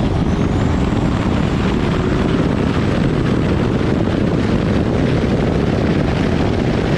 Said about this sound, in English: But you can hear his turbo spool up. I put the volume up so you can hear it.